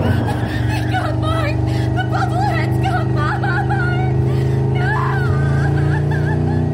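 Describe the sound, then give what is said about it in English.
A car engine drones steadily and loudly throughout as the vehicle speeds away, barreling at breakneck speed down a narrow, winding road, with people chattering and chuckling over the constant rumble. “There was a squeal of burning rubber, and then we were off, barreling down the narrow, winding road at breakneck speed.”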